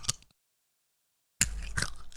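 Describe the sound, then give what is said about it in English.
Crunchy chewing of a hard blackjack sweet: a brief crackle, a second of silence, then nearly a second of loud, continuous crunching, with no talking. “That was crunchy.”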